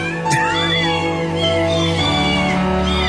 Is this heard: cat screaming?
yes